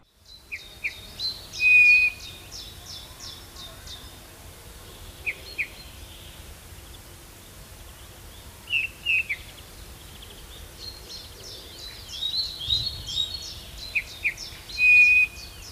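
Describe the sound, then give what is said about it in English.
Soft, piping bullfinch calls sound a few times at spaced intervals, mixed with brisk high chirps from other birds over a quiet outdoor background hum. No one speaks. “it's the bullfinch's prominent white rump that usually alerts you to the fact that you've just missed a bullfinch feeding in your garden”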